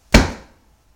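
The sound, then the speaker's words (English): One sharp, loud slap of hands clapped together to swat a mosquito, a single crisp smack that rings out briefly and fades into silence, with no talking. “Okay, you got a mosquito. Very good. Mosquito during the slap hands.”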